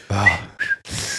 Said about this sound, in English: The whistle.